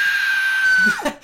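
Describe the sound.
A person's voice imitates a Nazgul screech: a single shrill, steady high-pitched wail held for nearly a second, then dropping sharply in pitch and breaking off.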